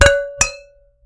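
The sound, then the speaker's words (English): Two bright clinks of wine glasses touching in a toast, each strike leaving a clear ringing tone that lingers and fades away, with no voices. “All right. Cheers. Cheers.”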